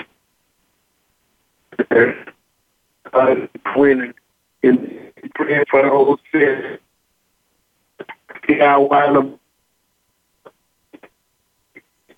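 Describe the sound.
A muffled, garbled voice over a poor phone line speaks in short choppy bursts broken by silent gaps, thin and band-limited, with the words impossible to make out.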